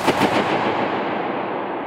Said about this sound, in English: Bursting a balloon was one of his favorites.